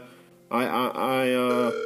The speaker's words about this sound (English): The phone appears to be ringing. This is a little unexpected. I hadn't asked for anyone to call. The phone is ringing, folks. The phone is ringing, folks.